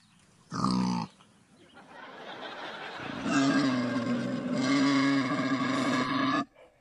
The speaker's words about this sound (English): Quick snorting, Ismael. It's not me. It's that warthog.